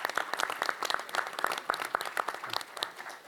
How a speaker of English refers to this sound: So I think that you all deserve a round of applause, and I think this group deserves a round of applause as well.